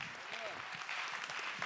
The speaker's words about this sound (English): Oh, clap your hands and give him praise.